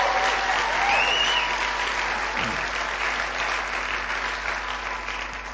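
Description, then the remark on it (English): A church audience at a morning service breaks into steady, sustained applause for God, a dense wash of many hands clapping at once that holds its level for several seconds before easing off slightly. “Let's give God a clap for that this morning.”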